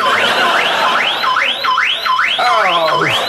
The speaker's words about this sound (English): I think the car alarm sound is, although, for anybody, annoying, and it would go right through, but it's very funny.